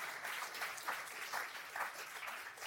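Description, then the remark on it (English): An audience claps in a steady, dense burst of applause, many hands overlapping into a continuous crackling wash with slight rhythmic swells, sustained at an even level throughout. “Come on, give me a hand clap real quick.”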